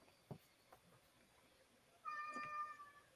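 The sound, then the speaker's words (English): A single drawn-out cat meow rises in the last second, clear, after a quiet stretch broken only by a couple of faint taps. No one speaks. “That's what I'm saying, Kitty. Meow.”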